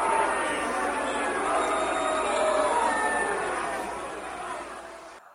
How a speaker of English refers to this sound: as you can tell, I dropped what's known as a microphone, and everybody was really proud of it. And they, you know, started clapping for me, and I wanted to get you something for what you did, and I couldn't find it, but I found it.